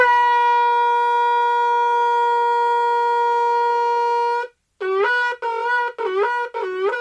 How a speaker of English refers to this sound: The howling sound of the shofar causes us to tremble, to shake us up a little bit, and bring us back to the state of the unblemished soul.